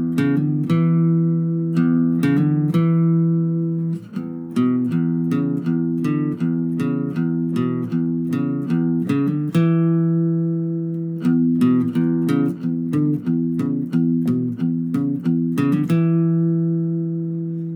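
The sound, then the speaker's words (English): A blues lick on acoustic guitar, repeated twice, with quick hammer-ons from fret 4 to 5 on the fifth string, played third finger to little finger, and fret 2 on the fourth string with the first finger, among plucked attacks over sustained low strings, at a moderate, even volume with no voices. “And then we have this hammer-on, which is a little bit tough because I'm playing it with my third finger to little finger hammer-on, 4 to 5 on the 5th string.”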